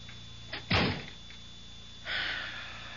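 A door swings and thuds shut with a solid impact, followed a moment later by a softer rustling or sliding noise; no one speaks.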